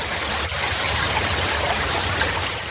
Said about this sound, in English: The sounds of water. This one always makes me want to go to the bathroom myself.